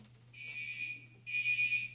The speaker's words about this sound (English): Those are the fire alarms. I guess they're being tested. Yeah, we knew that there was going to be testing.